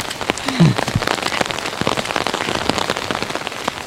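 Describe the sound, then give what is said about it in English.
Steady rain patters on a surface, a dense wash of drops with a brief low, voice-like murmur near the start, then continuous pattering throughout. “In your perfect weather, you love the rain. I love some rain.”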